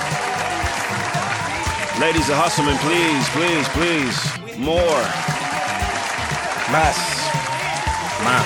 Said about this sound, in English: Need some applause for my nigga, man. Hold on. Hold on. Some more applause.